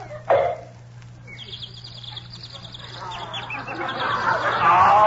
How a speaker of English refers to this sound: But I don't hear no bird. Turn your head a little bit more and you will.